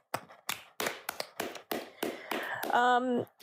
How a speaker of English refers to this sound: Clap it out for that.